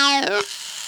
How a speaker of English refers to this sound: Did you hear that? It makes that weird sound, and then you hear these balls that are spinning down to the bottom of the timer, and that's it.